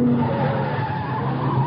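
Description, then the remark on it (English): A souped-up car, looking like Henri's and driven by the widow, speeds down from the house, roaring past with tires squealing in a sustained skid, loud, engine noise steady throughout the short burst with no voices. “Car coming down from the house. Yeah, at a good clip, too.”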